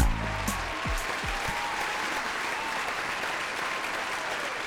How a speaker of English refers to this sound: Welcome to Done Being Single. I love the studio applause, even though we don't have a studio audience. It's canned.